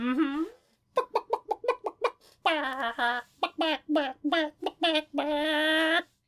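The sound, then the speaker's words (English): A person imitates a chicken, loudly voicing a quick run of short, staccato clucks followed by longer, drawn-out squawking calls. “That's not the sound a whale makes. There's a chicken.”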